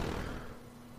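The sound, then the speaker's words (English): A small synthetic pixel firework burst from a letter-typing computer game, triggered by pressing the letter V, a bright crackly pop that fades over about half a second, leaving a soft lingering hum-like tone, with no talking. “Little firework burst, real satisfying little pixel sound.”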